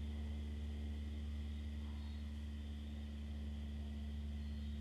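A steady, low droning rumble of an airplane passing overhead, fairly faint, holding constant throughout without any voices.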